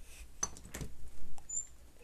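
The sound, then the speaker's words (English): Tolo, a female cat, bangs on a door to be let in: two quick, soft thumps followed by a fainter tap and a brief high squeak, all fairly quiet with no one talking. “Tolo sometimes just bangs on the door until I let her in.”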